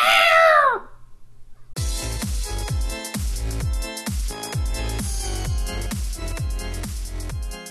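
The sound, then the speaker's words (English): A single loud, drawn-out cat meow rings out, then after a short pause a beat-driven music track kicks in and plays on. “And as always, we're filmed in front of a live studio audience of cats.”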